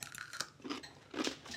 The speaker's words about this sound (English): I like this pickle. I really like the crunch. Very satisfying crunch.